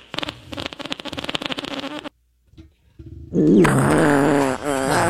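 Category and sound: sound effect, fart sound effect button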